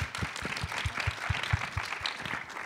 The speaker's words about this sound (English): Thank you guys. For a round of applause, please, for our panel.